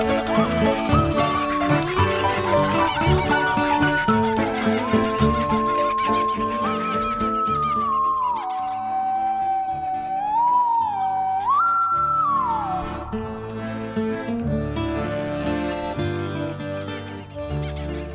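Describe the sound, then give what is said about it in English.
Pirate, a barking kookaburra, calls loudly and continuously, with harsh, raucous, barking notes that rise and fall in pitch, sometimes in long wavering glides, with no pauses and no talking. “That was Pirate, the Barking Kookaburra.”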